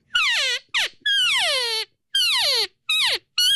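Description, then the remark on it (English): A person imitates an estrus cow call: a series of six loud, nasal, descending whines with strong harmonics, alternating longer and shorter calls separated by brief pauses. “That's more of an estrus cow.”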